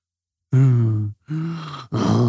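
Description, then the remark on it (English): A person imitates the slow, raspy breathing of a mummy: three drawn-out, voiced breaths, loud, with a groaning, throaty rasp and brief pauses between them. “The slow, raspy breathing of the mummy.”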